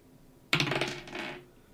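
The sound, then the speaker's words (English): Dice clatter onto a hard tabletop in a sleight of hand roll that comes up 6: a sharp first hit, then a quick run of bright, rattling bounces that taper off over about a second, with no voices. “Can I roll to stealthily steal them? Sure, roll a sleight of hand.”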